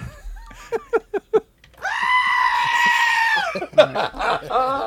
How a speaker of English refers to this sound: Yay, goats.